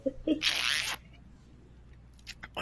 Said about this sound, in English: You just undo your zipper? No. What was that? Just a drink of the whiskey. Sounded like a zipper.